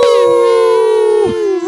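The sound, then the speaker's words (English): Several human voices howl together like wolves in one long, loud sustained note that wavers slightly and then bends downward at the end, with no other talk. “Am I supposed to do a different howl? No, that was perfect. I just like did a unison. Howl.”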